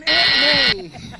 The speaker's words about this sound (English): Buzz me, I'm dead. It's all good. You got to say something before he buzzes you.